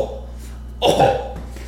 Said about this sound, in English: Let me clear my throat right quick.